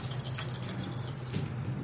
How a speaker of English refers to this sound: 3, 4, 5, 6, 7, 8. And I still have 4 more dice to roll.